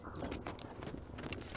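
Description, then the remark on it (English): Horse hooves clip-clop in an uneven rhythm, a handful of hollow knocks over a dense, steady background wash, moderately quiet, with no voices, as a cloaked rider rides up to a blacksmith's forge at night under a full moon. “The light of a full moon shone high above when a stranger in a dark traveler's cloak rode up to the echo of the hammer's ceaseless ring.”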